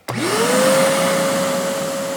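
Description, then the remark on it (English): A double-filtered vacuum cleaner, set up in a living room next to a stove for a chimney cleaning, switches on abruptly and spins up to a steady, loud whine with a broad rushing roar, running continuously with no voices. “The first thing Britt does at the Wilsons is set up a big drop cloth and a double-filtered vacuum in the living room next to the stove.”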